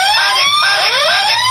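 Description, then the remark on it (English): A loud, piercing panic button alarm blares on its own, its shrill electronic tone sweeping upward in quick repeated whoops with no pause between cycles. “Why would you hit the panic button”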